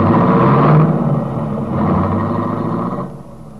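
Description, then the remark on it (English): A large car's engine rumbles steadily, then fades as the vehicle pulls away and disappears around a curve, with no voices present. “Brett sighed ruefully as the big car disappeared around a curve.”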